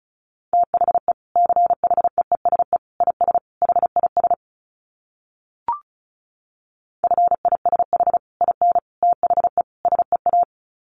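Rapid Morse code at about 35 words per minute for a dit challenge practice drill: a steady mid-pitched tone keyed in quick dots and dashes, two runs split by a pause with one soft click, no voices.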